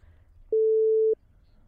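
A single steady electronic censor beep bleeping out a name, a pure mid-pitched tone lasting about half a second, abruptly cuts in loud over faint low background murmur, then stops just as sharply.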